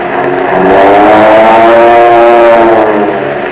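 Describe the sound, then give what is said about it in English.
Powerful Army Air Force aircraft engines roar loudly and steadily, a rich droning growl that swells slightly in pitch before easing off, with no voices present. “Today, your Army Air Force has planes that sound like, well, listen.”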